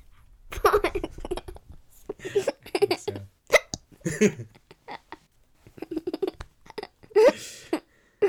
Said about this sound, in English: I was gonna get hiccups after laughing. In other news, hiccups have arrived.